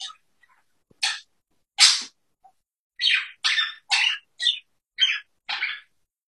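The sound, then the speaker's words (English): A parakeet calls repeatedly, about nine short, scratchy chirps in an uneven sequence, clear against an otherwise silent background with no voices. “And we will leave this meeting with peaceful bird sounds.”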